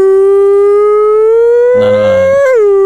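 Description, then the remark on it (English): A loud siren alarm wails in one long, steady tone that slowly climbs in pitch, with a brief rougher burst layered over it before the tone dips and cuts off. “We need a little alarm or something for every time that you display...”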